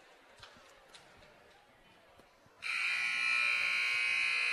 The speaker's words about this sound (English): Not sure if you guys heard that, but the buzzer just sounded. Game is starting back up.